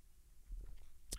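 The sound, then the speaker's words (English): Quiet, wet chewing of a Kool-Aid pickle: a few soft, squishy bites in quick succession, then one sharper, crisp crunch near the end, with no talking. “Kool-Aid pickles, face meat.”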